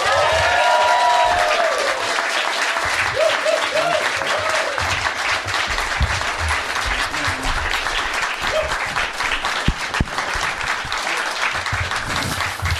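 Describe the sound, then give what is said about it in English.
Loud, sustained applause from a large audience welcoming Aunty Donna to the stage, a dense wash of clapping that holds steady for over ten seconds, with a few whoops and cheers rising briefly above it. “Please welcome to the stage with enormous applause, Aunty Donna!”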